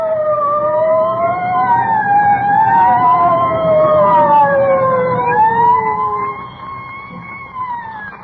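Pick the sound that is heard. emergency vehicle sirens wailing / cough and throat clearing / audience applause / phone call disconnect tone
emergency vehicle sirens wailing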